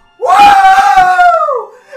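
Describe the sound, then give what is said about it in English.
A single loud, high-pitched scream, made by a voice imitating it, holds steady for over a second before sliding downward and fading, with no other sounds around it. “Just like a big scream.”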